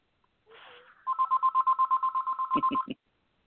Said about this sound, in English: I'm sorry about that. You can't silence the landline. No, it's probably a robocall. It's probably a robocall.